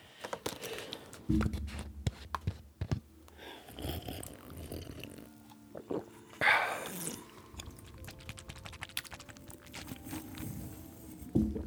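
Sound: chewing and biting food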